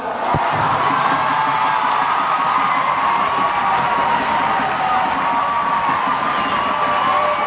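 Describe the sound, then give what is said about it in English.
A huge stadium crowd in New Orleans roars and cheers continuously after Abby Wambach's farewell speech on her retirement, a dense, sustained wall of voices with shouts and whoops rising out of it, loud and steady throughout. “Abby Wambach addressing the crowd last night in New Orleans.”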